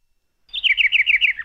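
A bird chirps in a quick, steady run of high, wavering notes that repeat in a bright trill, starting after a brief silence and continuing clearly on its own.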